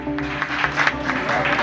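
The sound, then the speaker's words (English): A crowd in Mexico applauds President Andrés Manuel López Obrador as he casts his vote in elections: a dense wash of clapping hands with scattered louder claps and faint cheering voices mixed in, sustained at an even level throughout. “Andrés Manuel López Obrador, who was applauded as he cast his vote yesterday, is halfway through a six-year term as president.”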